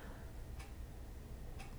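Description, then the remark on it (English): A clock ticks steadily in a house, two crisp clicks spaced about a second apart, fairly faint against a quiet hum with no one speaking. “You just hear the clock.”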